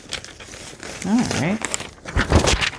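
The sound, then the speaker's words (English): Crisp rustling and crinkling of a sheet of music paper being handled, in short irregular bursts that grow louder toward the end, with a brief murmured voice in the middle. “Well, I have this pretty little thing of music paper. Why don't we grab one of these and see if we could do something with it?”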